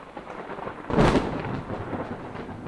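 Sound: thunder clap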